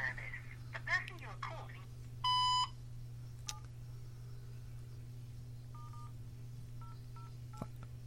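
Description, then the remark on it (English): A few separate phone keypad beeps as someone dials a phone at an uneven pace, plus a longer buzzy tone early on, clear over a steady low hum, with brief voice sounds at the start. “Oh, then I've got to dial that, haven't I?”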